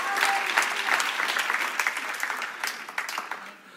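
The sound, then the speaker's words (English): An audience at a morning church service breaks into steady applause, a dense wash of many hands clapping at a fairly loud, even level for a few seconds before thinning slightly at the end. “How much would God, come on, if you're going to clap, you may as well, if you're going to clap for anything this morning, you clap for that glorious reality.”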